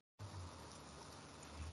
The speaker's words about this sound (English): I hear it raining over there. Oh, yeah, goddamn. See, your buddy got it after me. I guess I know the clouds are heading that direction.